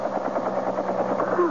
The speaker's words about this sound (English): Oh, it's a police helicopter. Police? Yeah, it says so right on the side.